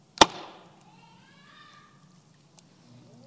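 A lump of clay slams down onto a potter's wheel with one loud, heavy thud, followed by a soft whirring hum and a faint tap.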